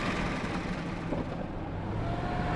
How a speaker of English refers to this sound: I joined him then in the cab of a 20-year-old truck with a rattling refrigeration unit. He was heading out to the southern part of the county, the longest route he navigates every month, 230 miles.